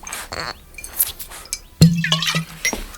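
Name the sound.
champagne glasses clinking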